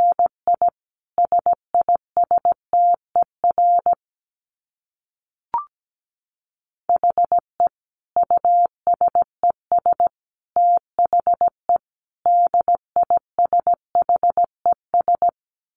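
Morse code at 17 words per minute: a steady mid-pitched tone keyed in quick short and long beeps, two runs of sending split by a silent pause with a single brief click.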